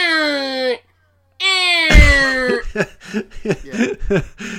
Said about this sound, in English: But it's making a keening sound, isn't it? It's making... It cries like a baby bird, doesn't it?